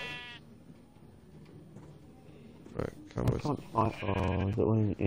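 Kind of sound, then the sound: sound effect, video game sheep bleating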